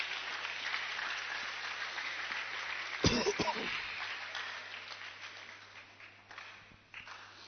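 An audience claps for a boy in a dense, crackling wash of applause, with a brief sharper burst partway through before the clapping gradually thins and fades.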